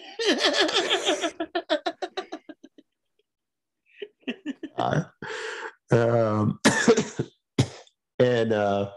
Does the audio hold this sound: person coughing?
yes